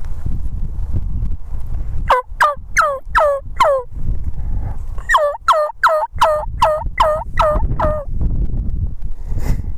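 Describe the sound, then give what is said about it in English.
Wild turkeys fighting, with two quick bursts of sharp clucking and purring calls, about five then seven in a row, standing out over a low outdoor rumble. No one speaks. “27 more seconds of fighting purrs and clucks now cut.”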